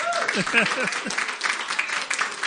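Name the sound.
audience clapping hands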